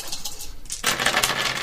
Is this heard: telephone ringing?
no